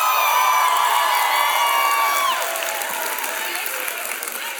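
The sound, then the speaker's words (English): An audience at a university ministry gathering screams and cheers loudly, people in the front row shrieking and whooping over applause, the roar staying strong before easing slightly toward the end. “I appreciate the people that screamed loud in the front row.”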